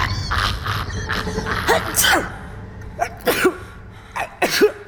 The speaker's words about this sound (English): I'm sorry. I just, whenever I get nervous, I sneeze and... I know it sounds crazy, but it's a real medical thing. It's called stress-induced rhinitis.